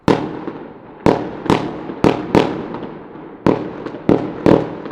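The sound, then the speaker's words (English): A string of loud fireworks explosions shooting up from gardens and sidewalks all around, heard from a balcony: about eight sharp booms at irregular intervals, each followed by a rumbling, echoing decay that fades before the next bang. No one speaks. “waiting for an explosion close enough gave ample chance to ponder.”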